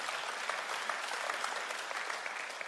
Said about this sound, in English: Because we clap for the second statement. But heaven claps for the first.